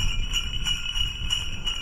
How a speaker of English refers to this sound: It's a sleigh, not a car this time.